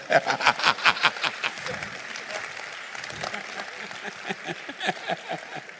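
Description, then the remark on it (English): An audience bursts into applause for attendees who have sat through all the sessions, many hands clapping in a dense, steady patter that stays loud for several seconds, with a few scattered chuckles mixed in. “Clap for them.”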